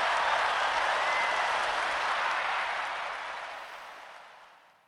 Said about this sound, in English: So shout out to DoorDash for that move. I appreciate that. You know, round of applause.